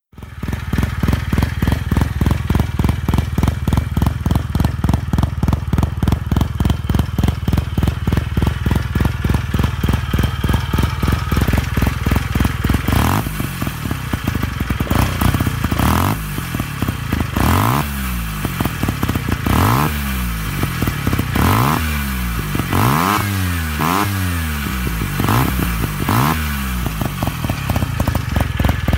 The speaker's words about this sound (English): Let's round it out with a rotary engine. This is a Hercules W200, and I believe this was a Wankel engine. But this thing actually runs on a mixture of gas and two-stroke oil as well.